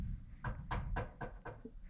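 Five sharp knocks on a door in a quick, steady rhythm, followed by a faint sixth tap. The knocking is fairly quiet and there are no voices.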